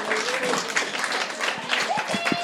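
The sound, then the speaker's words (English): Steady crowd applause at half-time fills the Tiger Turf Stadium during a cup tie between Gloucester City and Bishop's Cleeve. It is a dense wash of clapping with scattered whistles and a few shouts rising above it, sustained and fairly loud throughout. “Round of applause echoing around the Tiger Turf Stadium for what has been a fantastic first 45 minutes, it's got to be said.”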